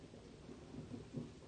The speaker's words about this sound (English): she could hear the river, loud enough to be heard over the sound of the storm.